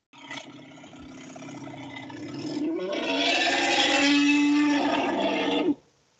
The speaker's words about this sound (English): That's an elephant. That's what I woke up to about 17 times one evening. That sounds like me when I stub my toe.